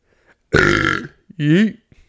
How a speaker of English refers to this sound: Burp in her face. Like a baby. Oh, it's cute when a baby burps in your face, but not me, huh?